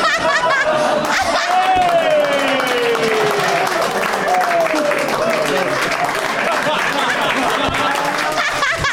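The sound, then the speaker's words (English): An audience claps loudly and steadily for the full stretch, a dense wash of applause mixed with crowd laughter, whoops and indistinct voices. “That's how the episode ends, was like 7 minutes of clapping.”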